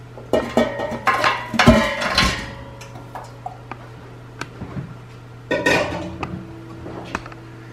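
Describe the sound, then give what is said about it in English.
Two roasted-chicken carcasses are dropped into a cooking pot, with a cluster of clanks and bumps, then scattered light knocks and a second clattering burst, over a low steady hum. “Okay, so we've got our 2 chicken carcasses in the pot.”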